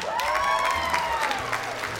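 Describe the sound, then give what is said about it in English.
An audience of kids clapping in a steady, scattered burst for about two seconds to show they like milk, with a high sustained voice cheering above the applause. “Okay, now clap if you like milk.”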